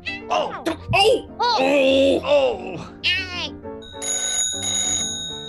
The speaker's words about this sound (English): Shh! I think I hear the phone ringing. You don't bark at the phone, you nitwit. You answer it, like this.